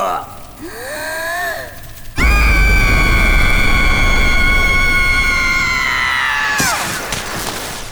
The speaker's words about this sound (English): is going to use her supersonic scream.